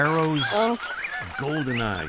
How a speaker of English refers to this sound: The bird is actually the Barrow's Goldeneye.